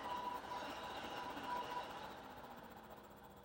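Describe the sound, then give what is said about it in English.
An Ullr Pad bed cooling pad running in silent mode gives off a steady, quiet motor hum with a soft airy fan wash beneath it, unbroken and even throughout, with no talking. “And you almost hear more of just like the hum of it than the fan.”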